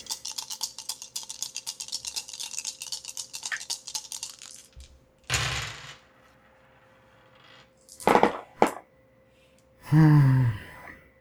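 Five dice rattle rapidly in a cup or hand for several seconds, then clatter onto a surface in a few sharp bursts, followed by a short voiced gasp or exclamation.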